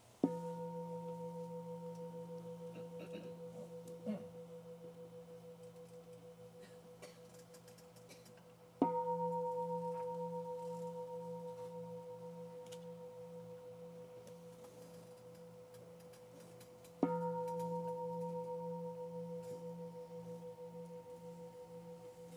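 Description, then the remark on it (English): A gong is struck three times, about eight seconds apart, each stroke ringing out in steady, humming tones that slowly fade before the next strike. No one speaks. “See if you can stay steady as the sound of the gong moves through the mind.”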